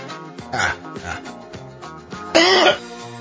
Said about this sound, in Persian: سرفه رو دیدید؟